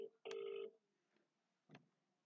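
Telephone dialing tones from an outgoing call: a short beep, then a loud, steady half-second electronic tone, followed after a pause by a brief, softer burst. No talking.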